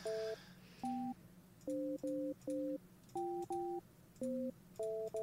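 A phone line sounds a quick series of short, clear electronic beeps at shifting pitches while a call is being placed, about a dozen tones in an uneven rhythm, steady, with no talking.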